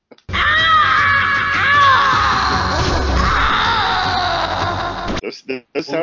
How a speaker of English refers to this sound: he was too busy making orgasm noises, like, while he was screaming.